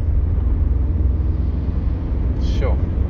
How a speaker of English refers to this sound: Taxi's in a hurry. Just going up the oncoming to get past me and the truck in front of me. Not dangerous at all.